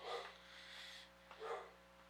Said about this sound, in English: Maggie is our dog. And when she barks, that means somebody's here.